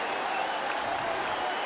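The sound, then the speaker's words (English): A baseball stadium crowd of more than 17,000, on its feet, cheers and applauds in a steady, dense roar that holds at an even, fairly loud level throughout, with no single voice standing out. “It's Jason Donald, and a crowd of better than 17,000 to its feet.”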